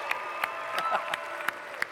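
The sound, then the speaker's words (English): A church crowd claps and cheers steadily to honor Kay, who is in the Bible study class meeting behind the walls, so she can hear it, with a dense wash of applause and sharp individual claps breaking through at irregular moments, alongside high-pitched whoops and cheering voices. “So can we just honor Kay and cheer her on and help her hear that right now?”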